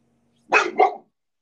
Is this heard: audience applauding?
no